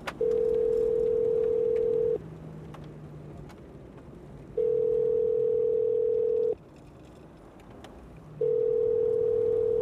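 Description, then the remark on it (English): An outgoing cell phone call from inside a car to Australia rings out with three long, steady tones, each about two seconds, separated by equal pauses, heard clearly over a low background rumble with no talking. “I'm gonna call the guys right now.”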